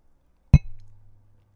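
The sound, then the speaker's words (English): One sharp glassy clink as two glasses of beer tap together in a toast, bright, followed by a faint low ring fading out. No one speaks. “It is. Cheers.”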